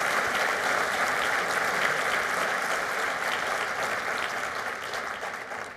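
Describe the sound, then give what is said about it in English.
An audience at a conference applauds steadily for the speaker's Patreon supporters, a dense, even patter of many hands clapping at constant loudness that fades slightly toward the end, with no voices standing out. “Could you please give them a round of applause for me?”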